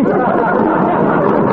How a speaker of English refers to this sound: Hey, look at the crowd in front of Needham's wallpaper store. Looks like an auction sale.